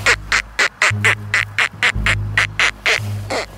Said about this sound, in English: She's going for water-based ducks. There's a couple of ducks on land. There are a few more land ducks she could lure. There's actually one. Hey, there is one coming.